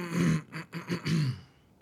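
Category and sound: human body sound, throat clearing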